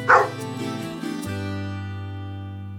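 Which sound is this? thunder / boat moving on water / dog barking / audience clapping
dog barking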